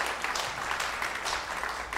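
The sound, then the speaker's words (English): A church audience claps their hands in a dense, continuous wash of applause, giving the Lord a hand clap for those who made a commitment of faith, steady and fairly loud throughout, with no one speaking over it. “So let's give the Lord a hand clap for people that made the”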